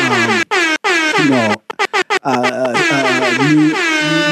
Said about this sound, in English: Oh my God. Everybody, people are losing their mind. We've got air horns going on.